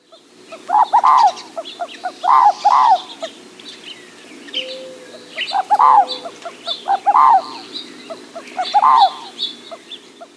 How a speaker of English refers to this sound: The Inca dove also has a call which can be described as an aggressive, stuttering coo of 4 to 5 distinct notes. This is what the Inca dove call sounds like.